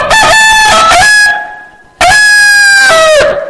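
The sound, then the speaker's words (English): A hen named Cassie cackles loudly, giving two drawn-out squawking calls, the first starting with a few choppy notes before stretching into a long, steady cry. “If y'all will look, Cassie is doing the cackling. She's a hen, so she's cackling.”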